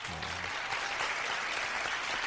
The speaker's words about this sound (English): Go ahead and throw an applause in there for you.